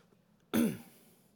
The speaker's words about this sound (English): I went to take a swig of water before the sermon because I thought, you know, it's nice to wet your whistle. And it went down the wrong hole. So if I cough at any point in the sermon, don't get too nervous, okay?